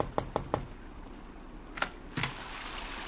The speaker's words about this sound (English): I thought it was his knock that I heard on my door.